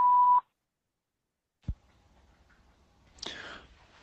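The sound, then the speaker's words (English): A single loud, steady answering-machine beep lasting under half a second, followed by silence, a sharp click, faint line hiss and a brief breathy rustle. “Leave your name and phone number after the beep.”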